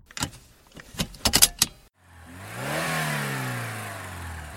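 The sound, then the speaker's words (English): A few quick clinks and rattles, then a car engine turns over and revs up, its rising hum swelling steadily as the vehicle accelerates away, fairly loud, with no voices. “Okay, why are you driving towards the droids?”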